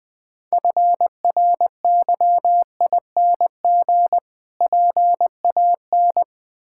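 Morse code sent at about 20 words per minute: a single steady mid-pitched tone keyed into crisp short and long beeps, grouped into letters with brief pauses between them, with no voices.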